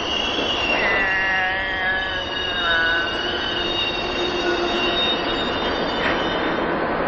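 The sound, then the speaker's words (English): A train rolls along the rails with a steady, loud rumble and high, wavering wheel squeals drifting over it, continuous throughout, with no voices. “Let's go on, Mr. Train.”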